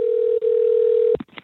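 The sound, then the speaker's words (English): A steady, loud telephone dial tone hums for about a second with one brief break, then cuts off into a few sharp clicks, like a handset or keypad being pressed, as a call that was cut off is redialed. “Robbie Rist got cut off there. I think it was Barry Williams tapping the phones. I'm going to try to call him back.”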